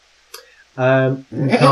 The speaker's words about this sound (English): That's funny because I just heard a sheep.